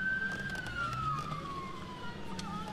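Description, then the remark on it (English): A police siren wails in one long, slowly falling sweep during a high-speed chase, clear, riding over a steady low rumble of engine and road noise. “Was that lights and siren for me, officer?”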